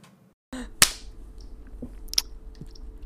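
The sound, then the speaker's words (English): Two sharp, loud hand claps ring out about a second and a half apart, with a few softer taps between them over a low background hum. No one speaks. “That's enough of the clapping.”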